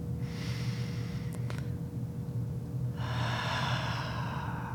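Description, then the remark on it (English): A slow, deep breath drawn in during a meditation breathing exercise, a brief pause, then a long, airy exhale over a faint steady hum, with no talking. “Inhaling peace and exhaling any lingering holiday stress. Breathing in.”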